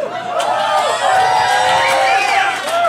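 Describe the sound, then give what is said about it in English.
An audience cheering loudly and continuously after a performer says he has been a dork for 30 years, a dense wash of overlapping voices with scattered higher whoops and shouts rising above it throughout. “Some cheer, but others of you are like, you're older than 30, bro.”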